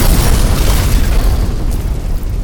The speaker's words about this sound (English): And I got to say, man, one of those like bomb sound effects in here after you said that.